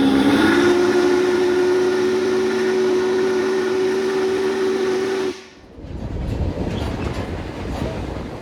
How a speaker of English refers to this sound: Volunteer crew members greet us as we board refurbished historic rail cars, and soon, our journey begins.